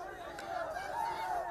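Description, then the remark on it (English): A crowd of men in India shout anti-hijab slogans such as "Jai Shri Ram" at a lone woman in a hijab entering her college, their raised voices merging into a dense, continuous roar that stays loud and steady throughout, with no single voice standing out. “You're hearing the sound of a crowd of men shouting at a lone female as she enters her college dressed in a hijab and a mask over a long black gown.”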